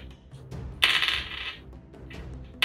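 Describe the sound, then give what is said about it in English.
A burst of many dice rolled for a dexterity saving throw in a tabletop role-playing game, clattering and tumbling across a hard tabletop in a bright rattling cascade that swells for about a second, with scattered small clicks before and after. “That's a lot of dice you're rolling!”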